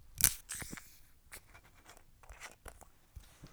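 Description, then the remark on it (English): A sharp crack and brief hiss as a carbonated, orange-flavoured hemp seed extract drink is opened, followed by scattered scraping and rustling handling noises. No one speaks. “All right, should we crack this bad boy open? Let's crack this bad boy open.”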